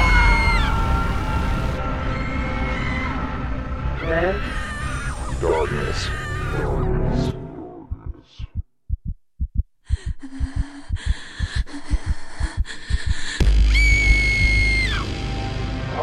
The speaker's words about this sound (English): When the screaming starts.